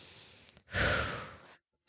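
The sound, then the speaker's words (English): A deep breath, drawn in softly and then let out in a long, loud, breathy sigh, followed by silence and a faint click. “Oh, let's just take a deep breath right now.”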